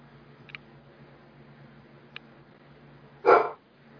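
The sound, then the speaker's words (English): A single loud dog bark in a movie scene near the end breaks a quiet stretch of low, steady hum; two faint, brief clicks come before it and no one speaks. “Poor doggy. Bye bye, doggy.”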